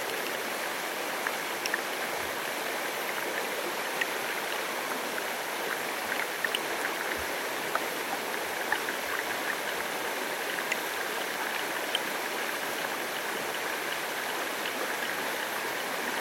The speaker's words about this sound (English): Glass, mirror, lapping, rolling, swift, tearing, flooding. Which is it? What is it? All river.